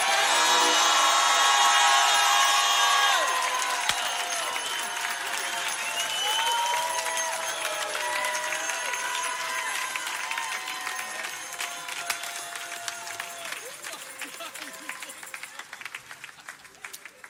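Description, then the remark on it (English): A large crowd gives God a roar after a prayer, roaring and applauding in a dense wash of clapping and cheering that starts loud and fades gradually while voices shout and whoop throughout. “In the name of Jesus Christ, our Lord, I give God a roar.”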